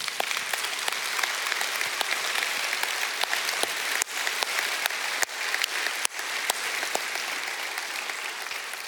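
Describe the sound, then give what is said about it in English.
An audience applauds in thanks steadily for about nine seconds, a dense wash of many hands clapping at an even, fairly loud level with a few sharper individual claps standing out. “And I would like us to give them a hand of applause and thanks right now.”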